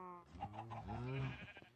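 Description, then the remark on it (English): Cows moo on a cow farm at the back of a building, as game sound effects, with a few drawn-out, overlapping calls rising and falling over under two seconds, moderately loud, and no talking. “And he's got a cow farm in the back. You can hear them all. Yeah, making all kinds of racket.”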